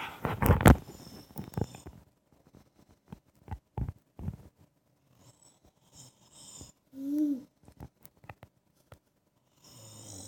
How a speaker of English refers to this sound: That's Daddy snoring. Oh, silly Daddy.